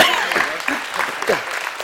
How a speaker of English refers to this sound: Give these two guys a big round of applause.